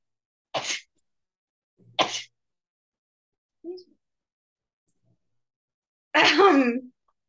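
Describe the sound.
Three loud sneezes at irregular intervals, the last one longer and more voiced, with a brief soft vocal sound between them and quiet pauses otherwise.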